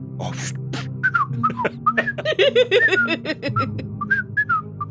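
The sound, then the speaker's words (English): A person whistles a jaunty, bouncy melody, quick notes rising and falling in short phrases, with a few breathy puffs between them over a low steady hum. “I will whistle a jaunty tune in memory of Grandma Edna.”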